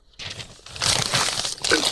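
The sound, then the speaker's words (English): Paper being crumpled: a steady stream of crackling, crinkling noise that starts softly, then grows louder and denser, continuing for nearly two seconds with no talking. “Piece of paper. I'm trying.”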